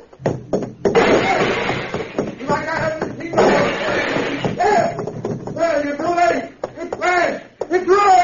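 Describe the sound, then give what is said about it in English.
A voice machine in a basement is smashed with a crowbar in two loud bursts of crashing, clattering blows, followed by agitated voices calling out. “I'll smash you like I smashed this machine.”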